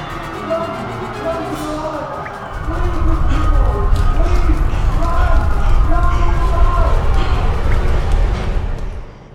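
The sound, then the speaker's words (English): A mob coughs, wails and cries out together as they stumble blindly through grey smoke from a shattered vial, over a heavy, rumbling shuffle of thudding steps, swelling louder after a couple of seconds and holding steady before cutting off. “The mob begins to cough and cry as they stumble forth blindly.”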